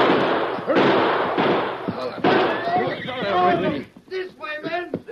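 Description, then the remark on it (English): Horses whinny loudly and repeatedly amid a dense, noisy commotion of thuds and scuffling, ending with a couple of shrill, wavering neighs. “Get on your horses and ride.”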